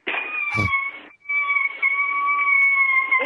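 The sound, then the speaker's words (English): A fake-sounding dog whimper in a crank phone call about a pet shop selling a defective dog: a loud, high, unwavering whine held in two long stretches with a brief gap between, plus a short thump near the start. “And I just love it because it's the most fake dog sound ever.”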